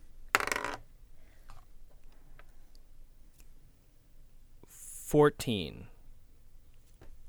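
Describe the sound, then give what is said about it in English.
Dice rolled for an ability check clatter briefly across a hard table surface, a quick rattling tumble, preceded by a short burst of breathy noise as the player blows on the dice, and accompanied by a brief vocal sound near the end. “I'm blowing on my dice.”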